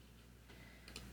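A few faint, crisp clock ticks sound over a low steady hum, spaced about half a second apart, with no voices present.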